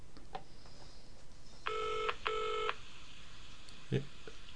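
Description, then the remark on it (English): Two short electronic telephone dialing tones sound back to back at the opening of a song, each about half a second long with a brief gap between, clear over a faint hiss and a few scattered clicks. “Are you ringing someone?”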